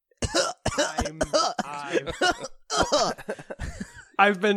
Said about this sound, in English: You're not looking too well, buddy. You sound like you're coughing up some poison.